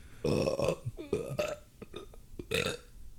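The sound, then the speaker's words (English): A loud, drawn-out burp from someone having digestion issues, croaking through several voiced bursts over about three seconds with brief breaks between them. No talking alongside it. “Having digestion issues today, man.”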